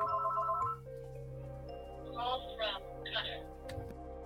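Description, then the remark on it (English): A landline phone rings with three short, warbling electronic trills in quick succession over a steady low hum, following a brief sustained tone at the start. “Who has a house phone?”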